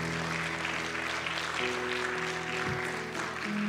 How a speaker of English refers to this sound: Come on, let's give the Lord a hand clap this morning.